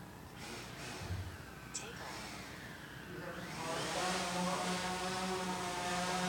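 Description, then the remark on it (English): A DJI Phantom 3 quadcopter drone's propellers whir in a steady, buzzing hover indoors without GPS, the motor whine shifting in pitch and then growing louder and fuller as the drone is flown toward the speaker. “This is the DJI Phantom 3.”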